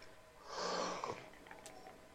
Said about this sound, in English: Oh, sorry. Yawn, yawn.